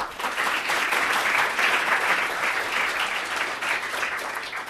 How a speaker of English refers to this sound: So please give a round of applause now to welcome our writers